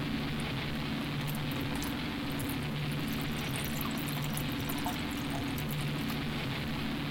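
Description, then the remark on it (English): A blood orange craft cider called Space, just opened, pours steadily into a glass for several seconds, a continuous fizzy, splashing hiss over a low hum, with no one talking. “Give it a pour.”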